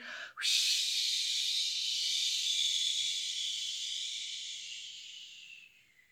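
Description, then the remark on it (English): A voice makes a long, breathy whooshing hiss in imitation of whispering wind, rising quickly and then holding steady for several seconds before slowly fading out. “Whoosh. I'm the wind I breeze and blow. Listen, listen, how I whisper.”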